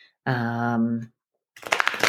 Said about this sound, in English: So that loud noise, right? I'm shuffling some cards for us.